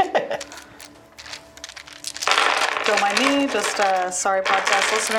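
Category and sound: rummaging through dice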